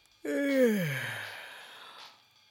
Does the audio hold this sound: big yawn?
yes